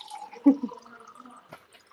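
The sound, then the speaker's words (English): Water splashes and trickles as it is poured into a glass, a short pour with a bright gurgle near the start and a few small drips after, fairly quiet overall. “Poured that bourbon. Yeah. That was water.”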